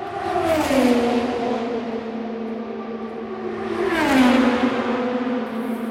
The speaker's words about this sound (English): The next one we'll listen to real quick is this will be our reference point. And these are Indy cars going around the track during the race at top speed over 200 miles an hour at the Indianapolis 500.